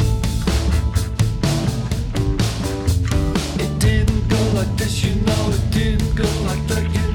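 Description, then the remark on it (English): A loud, dense rock song, the last track on an album, plays throughout, with steady pounding drums under thick, sustained guitars and a full band sound, continuous, with no one talking over it. “You'll recognise this is …, the last track on the album.”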